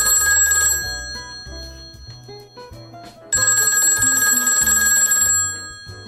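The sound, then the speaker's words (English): A telephone rings in two bright, trilling bursts separated by a short pause, loud, over a steady musical backing with no voices. “I think that phone's ringing if I can hear it.”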